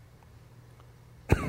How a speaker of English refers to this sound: Excuse me for coughing. I had to call out like all 1,200 runners' names as they came across the finish line, and my throat's, I don't speak from here. Not a good sign.